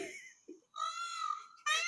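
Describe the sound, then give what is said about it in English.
A male peafowl gives loud, piercing, wailing calls, a short cry followed by a long drawn-out one and another starting right after, clear with no talking. “It is a, that's a peafowl. It's the male bird of the peacock.”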